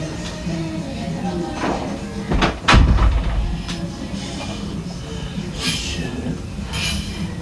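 A door shuts with a single solid thud, preceded by a brief creak and rattle, over a steady background hum of muffled music playing next door.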